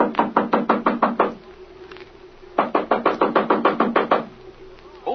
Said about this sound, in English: Well, here we are. Knock on that door there,